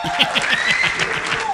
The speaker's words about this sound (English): So don't you have like a button of clapping and cheering and stuff? Hold on. Yeah, here you go. It's like anticlimactic. Yeah, there you go.